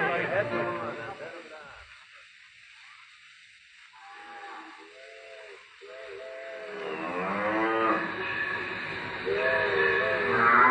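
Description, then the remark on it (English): Cattle lowing on railway tracks, blocking a train's right of way to the station, with several long, drawn-out moos overlapping and growing louder in the second half, over a steady hissing, rumbling background. “Say, the Wyoming special can't get through to the station on account of them cattle blocking the right of way.”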